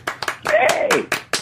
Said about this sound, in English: Oh, nice. Applause. Yeah, we always do that.